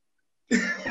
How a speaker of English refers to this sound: Are you coughing?